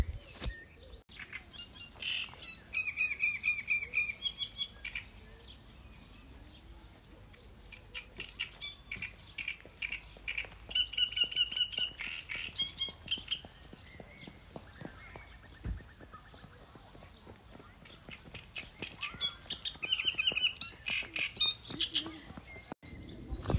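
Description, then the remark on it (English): Reed warblers sing busily from reed beds near a public beach, bar and cafe at Lac d'Orient near Troyes, France, in the evening. Their chattering, repetitive phrases of churrs and squeaks come in bursts over steady background noise, with a faint murmur of people. “This evening we're at Lac D'Orient near Troyes, and the reed beds near the public beach and bar and cafe seem to be alive with what I think are reed warblers.”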